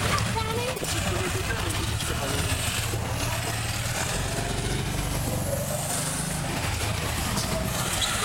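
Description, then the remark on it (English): A steady, loud roar of a weekend motorcade of at least 50 motorcycles passing in the Eastern Townships, a continuous rumble of revving bikes with no break, as if a long procession is passing. “I'm thinking at least 50 motorcycles just went by.”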